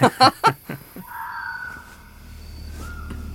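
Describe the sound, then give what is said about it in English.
An owl calls three times in quick, loud, harsh bursts, followed by two fainter calls and a thin sustained whistling tone that fades into a low background rumble. “That's just an owl.”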